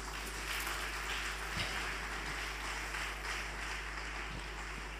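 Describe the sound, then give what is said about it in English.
A church audience claps together as a clap of offering for its leaders, a dense, steady burst of applause that holds for about five seconds, many hands blending into a continuous crackle over a low, constant hum. “Let's give a clap of offering unto them.”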